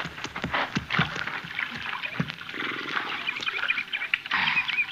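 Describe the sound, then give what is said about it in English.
Horses being watered at a creek splash and slosh through shallow creek water, with irregular churning and splattering and occasional low snorts, continuing steadily with no voices. “Yeah, we better water our horses here at the creek,”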